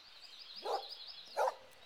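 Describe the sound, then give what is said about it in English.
A dog named Toby gives two short, sharp barks about a second apart over a steady high-pitched warbling hum in the background. “Come here, puppy! Come see Carly! Come here, you silly dog!”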